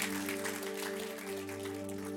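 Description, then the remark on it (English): A large church audience claps steadily after a prayer, the dense patter holding at an even level for the whole stretch while a low, sustained musical drone hums underneath. “Hey, will you give a huge round of applause?”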